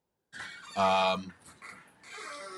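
A dog gives one short, loud, high-pitched bark, with quieter yappy noises and muffled background sound trailing after it.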